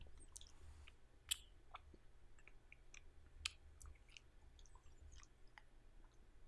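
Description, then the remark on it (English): Someone chews Twizzlers candy: quiet, sticky mouth clicks and smacks at an uneven pace, with a couple of sharper snaps, over a low background hum and no talking. “A lot of chewing. Twizzlers do require chewing, yes.”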